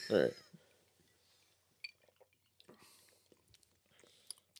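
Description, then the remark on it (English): Glasses of whiskey clink together in a toast, one bright, loud ringing knock at the very start, followed by quiet mouth and sipping sounds with faint murmurs. “Cheers, gentlemen. Cheers. I'm left you hanging. Clinks with me.”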